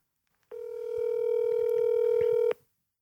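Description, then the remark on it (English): A single steady ringback tone from an outgoing phone call to a man, one clear buzzing ring lasting about two seconds, fairly loud, with no talking. “Let's call his ass.”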